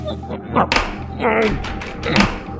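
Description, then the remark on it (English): A few dull thunks and knocks as someone tries to open the locked door, fitted with a manual lock, to an emergency backup power room, rattling it against the frame, with muffled voice-like sounds in between. “It's locked.”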